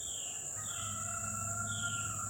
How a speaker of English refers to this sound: Now, this sound. Is there a rooster crowing in the morning? This is pretty, yeah. Oh, yeah. That's you it. Hear him? That's a rooster. One more time.